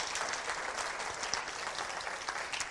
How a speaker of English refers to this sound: So you guys have done a wonderful job. I'd like to give you a big round of applause, and I think you all should as well.